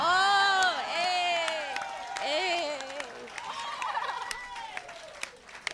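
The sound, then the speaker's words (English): An audience claps in scattered, uneven bursts while voices whoop and cheer loudly over it, the cheering strongest at the start and gradually thinning out. “And that is the only time you're allowed to clap for that shit, too.”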